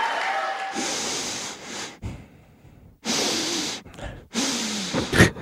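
Donald Trump breathes heavily and deeply through the nose late at night, loud breaths in three long rushing bursts separated by short pauses, with a faint voice briefly underneath.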